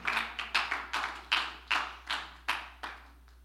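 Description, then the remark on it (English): A church audience claps in unison to praise Jesus, about ten sharp, steady beats roughly three per second, moderately loud with no voices over them. “Let's clap our hands, Lord.”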